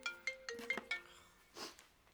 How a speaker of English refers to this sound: That was just Ocean's phone, and we were just going to quench that immediately.